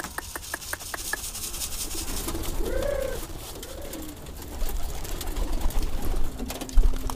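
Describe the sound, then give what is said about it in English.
Pigeons circle back toward a coop in an old hutong after being fed and released, as their keeper calls them home; their passing is marked by a few soft, swooping whistle-like tones over steady outdoor background noise, with faint tapping clicks at the start. “Mr. Wong is back at the pigeon coop in his old hutong”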